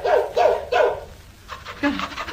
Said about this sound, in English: it's a dog. Here, boy, here. Come on, good boy.